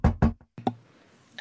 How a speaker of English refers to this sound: And he will walk over to the room that Sevier is staying in and the room that Fall's staying in and knock on the door.